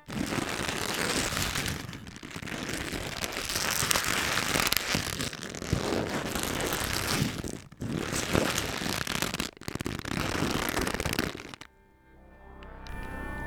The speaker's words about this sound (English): Here's some crinkly paper.